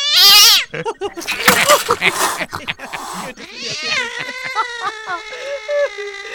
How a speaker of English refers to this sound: YouTube videos of cats being startled by cucumbers